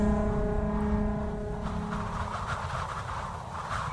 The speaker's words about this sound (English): They are firing up the engines now, ready to summon their fleet.